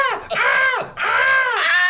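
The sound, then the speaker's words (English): A voice lets out a mock high-pitched, shrill scream, loud, in two or three rising-and-falling wails packed into under two seconds. “He screamed like a girl? Like a girl.”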